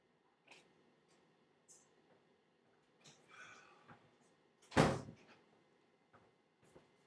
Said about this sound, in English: God, it sounds like my kid is like spazzing out. I have to go close the door. Just one second, people.